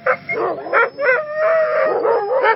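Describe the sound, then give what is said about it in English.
Sled dogs howl together in overlapping, wavering cries, with short yips at the start before one long, steady howl rises and falls in pitch. No one speaks. “They would use a team of sled dogs in the winter”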